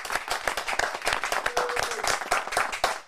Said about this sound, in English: Ladies and gentlemen, live at Paco's Place, a big round of applause, independent actor, Rhandy Torres.